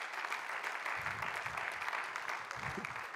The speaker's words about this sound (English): That's a good place to clap your hands.